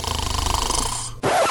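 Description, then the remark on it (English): Loud snoring with a harsh, rattling buzz that fills most of the moment, then cuts off abruptly and gives way to a brief, different sound at the very end. “Tired of coming home to a relaxing and uninterrupted night of sleep where literally no one snores loudly?”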